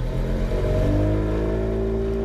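The outboard motor of a 14-foot Zodiac inflatable dinghy runs loud, a steady droning engine note that climbs slightly in pitch as it revs, on the way to a forest near Barclay Sound on the west coast of Vancouver Island. No voices.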